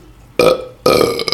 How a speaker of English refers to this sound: Excuse me, I'm burping because I'm drinking beer.